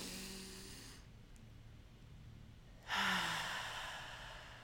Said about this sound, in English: Let's start taking deep breaths in the beginning of each episode. Ready? Like, together. Let's do it together, guys. Ready? One, two, three, inhale.